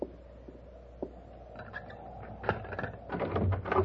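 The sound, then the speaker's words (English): A few sharp latch clicks, then a door creaks and rattles open with rising scraping and knocking, fairly quiet, with no voices. “Daniel, let me in.”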